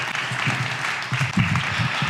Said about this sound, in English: And if you guys could give him a round of applause and just a hand to welcome him to Axe Church this morning.